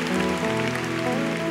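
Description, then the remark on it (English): A large audience at City Harvest Church applauds the married couples during a morning service in a dense, steady wash of clapping that holds at an even loudness, with sustained musical tones ringing underneath. “Ladies and gentlemen, brothers and sisters, I present to you all the married couples who are strong in their marriage this morning in City Harvest Church. Give them a big clap right now.”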